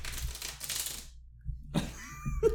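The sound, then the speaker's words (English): A quick burst of crisp, rapid fluttering clicks, like a deck of playing cards being riffled, lasting about a second before stopping. Faint clatter and a brief tonal chime follow. “Do you want me to shuffle these cards on your cock?”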